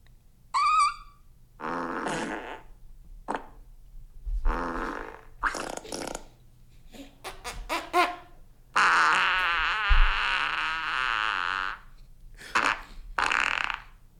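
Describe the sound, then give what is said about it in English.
A run of loud farts in separate bursts of varying length, one of them squeaking upward in pitch at the end as if asking a question. “That one fart, like, asked a question.”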